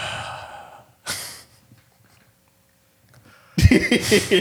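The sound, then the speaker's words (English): A voice imitates heavy, labored breathing like wrestler Ultimate Warrior: a loud breathy exhale, a short pause, then a burst of harsh, ragged panting, with no words spoken. “Yeah, that boy gonna be breathing heavy like Ultimate Warrior last day.”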